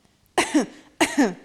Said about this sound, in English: Three coughs.